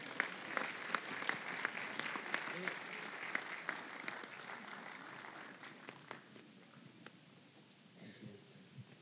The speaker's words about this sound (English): Amen. Amen. Would you clap, please?